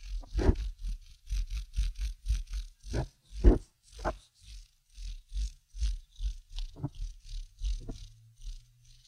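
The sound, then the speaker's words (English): A regular Dixon Ticonderoga pencil with flat, non-rolling sides is rubbed back and forth between palms, making a steady, rhythmic purr-like rumble, about two soft gritty strokes per second, with a few louder scrapes and no talking. “if you take a regular pencil, like one of those Dixon Ticonderogas, you know, that has like the non-rolly sides, and you rub it between your palms.”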